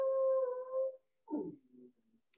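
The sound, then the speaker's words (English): A dog named Memphis lets out a long, steady howl that holds for about a second, then trails off into a few shorter, wavering whimpering yowls, fairly loud. “Your dog, see, Memphis agrees.”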